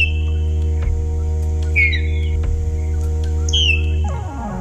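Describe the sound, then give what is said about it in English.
Song of the Lapland Longspur (Calcarius lapponicus): a few brief, bright, slurred notes that sweep downward in two short bursts, set over a loud, steady, low droning hum that fades near the end. “But for now, that's today's Talkin' Birds featured feathered friend, Calcareus lapponicus, the Lapland Longspur.”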